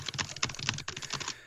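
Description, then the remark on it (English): Rapid, continuous typing on a computer keyboard while writing a manuscript, with dense clattering keystrokes in quick succession, fairly loud, with no voices. “I can't tell if that was a sound clip or you're actually just hammering on your keyboard.”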